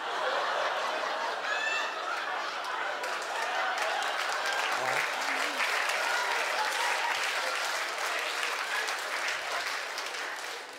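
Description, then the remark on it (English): Sustained audience applause fills the whole stretch, a dense, steady wash of many hands clapping at an even loudness, with faint scattered chuckles mixed into the crowd noise. “Can't believe you clapped that.”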